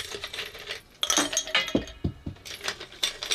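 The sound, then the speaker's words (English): Ice cubes clatter into a glass in a quick series of bright clinks and knocks, with several sharp hits and a rattling settle, fairly loud and with no talking. “Okay, let's start with some ice.”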